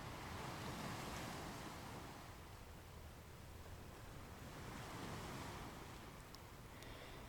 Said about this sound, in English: And the day unfolds ahead of you in a sense of timelessness, here in your healing place, as the waves lap rhythmically on the shore. The gentle splash of the waves refreshes your feet, and the sun gently warms your body.